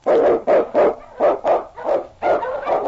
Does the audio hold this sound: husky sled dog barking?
yes